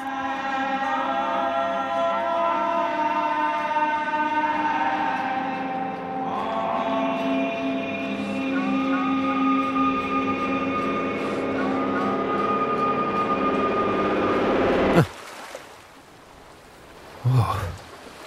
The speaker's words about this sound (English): Sometimes there are airplanes in the sky, and the song ends with a recording of me improvising a song, and it kind of sounds like I'm being sucked into the engine at like a 747.